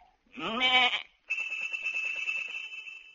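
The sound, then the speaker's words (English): A sheep gives a short rising bleat, then a bright ringing tone from a tuned bell on the sheep, rung as a shepherd knocks the sheep on the head with his crook, sustains steadily for a couple of seconds with a faint rattling pulse beneath it, fairly loud. “He say, a lot of sheep have bells, for these sheep are tuned, so as to make the chromatic scales, which he makes use of by knocking the sheep on the head with his crook, a signal to them to ring the bell.”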